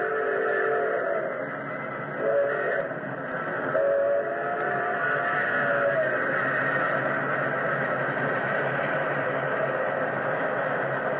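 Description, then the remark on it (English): An express steam engine roars out of a tunnel mouth and thunders past with a loud, steady roar of rumbling wheels and hissing, while a shrill whistle cries out in sustained tones over the din. “Like an incredible, fiery-eyed monster, the express engine roared out of the tunnel mouth.”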